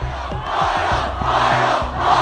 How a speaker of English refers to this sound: this was a scene a short time ago as riot police used pepper spray, tear gas, and rubber bullets to hold back a surge of protesters trying to storm the territory's main government complex.